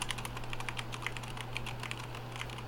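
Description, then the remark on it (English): Rapid, quiet clicks of keys being typed on a new computer keyboard with a 10-key pad on the side, an irregular run of soft taps over a steady low electrical hum, with no one speaking. “So, this is me typing on my new keyboard.”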